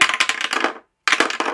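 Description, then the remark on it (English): Dice clattering across a hard table in rapid, bright rattling bursts, a brief silence, then a second roll of sharp clicks and tumbling, as players roll to see who goes first. “we better roll to see who gets to go first”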